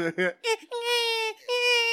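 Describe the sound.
A man's voice imitating a baby crying: a few short choppy sobs, then two long, high, wavering wails with a brief break between them, loud and alone.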